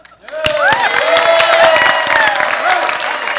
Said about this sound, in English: But when you go through, I want all you people to clap and shout for them. And you have to take and lift your hands up and celebrate the victory.